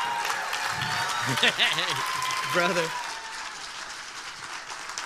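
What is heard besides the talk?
audience applause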